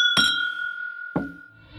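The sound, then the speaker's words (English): Glasses clink together in a toast, two bright strikes about a second apart, each leaving a clear ringing tone that hangs in the air. No voices are heard. “And to you, we say, may your glasses be full and your spirits high. Cheers!”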